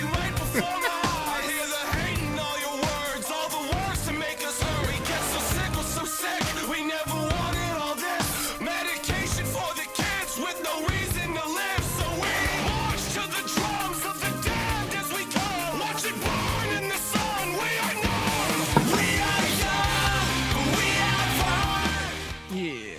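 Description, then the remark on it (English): A loud, dense rock song with shouted, rhythmic rap-style vocals over driving drums and heavy guitars, playing continuously at full intensity before cutting off at the end. “What's funny about the way that this yell rapping goes on through this whole album is that he's already yelling, and then clearly the note was, well, you have to go up more.”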